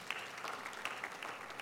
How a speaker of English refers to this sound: Thank you for that smattering of applause, by the way. I've determined we gotta figure out the applause situation here at this church.